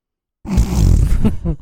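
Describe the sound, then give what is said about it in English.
A muffled, stifled burp rumbles low in the throat after a moment of silence, lasting about a second before trailing off into a brief voiced, groan-like tail. “No, I had a burp. Okay. I was suppressing it.”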